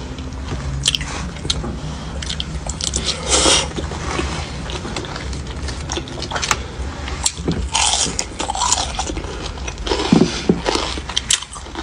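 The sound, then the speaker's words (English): Loud crunching and chewing of hard-fried fish, with repeated bites and wet mastication sounds in an irregular rhythm over about twelve seconds, no talking. “Hear that crunch?”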